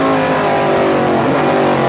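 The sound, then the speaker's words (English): A loud race car engine on a track roars steadily at high revs, with a sustained buzzing drone that rises slightly as the car accelerates, and no voices are heard. “I know it. I don't know it in this car, though. I should be going faster in this car.”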